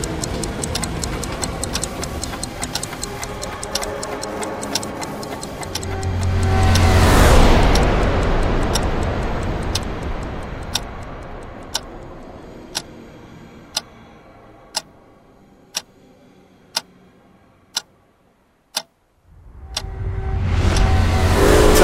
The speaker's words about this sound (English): And in the background, there's clocks with the little arms ticking to show that we're going through time in a strange way.